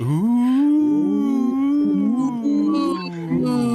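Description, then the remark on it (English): A live event audience joins in a long, loud, sustained "ooooh" at someone on stage, the pitch sliding up and down in wavering glides for several seconds. “Oh, you're gonna hear the one thing that no one ever wants to hear at a live event when they're on stage. Cheering and ooh.”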